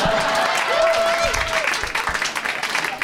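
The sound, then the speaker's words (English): A live audience claps steadily for a few seconds, a dense wash of applause with a brief whistle near the start and the clapping thinning out toward the end. “It's such a nice crowd.”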